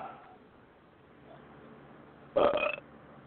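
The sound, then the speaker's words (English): A single loud, raspy belch erupts after a quiet stretch, lasting about half a second with a rough, gurgling texture. “So for you and your people, this belch is for you.”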